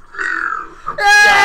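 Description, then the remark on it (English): A woman in a video lets out a loud, drawn-out burp that ends in an even louder, rasping belch, unaccompanied by speech. “He loves watching women why burp.”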